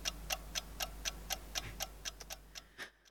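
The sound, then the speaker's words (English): A ticking timer clicks steadily, about a dozen crisp, sharp ticks evenly spaced at roughly four per second, quiet and mechanical with no voices, the last few ticks slightly irregular before it stops. “You know what we need? The timer. We need the timer.”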